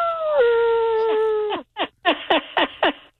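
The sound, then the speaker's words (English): A dog gives a single drawn-out howl that holds steady then slides down, followed by a quick run of five or six short, sharp yips, fairly loud with no one talking. “you ever bark at the moon with a wolf?”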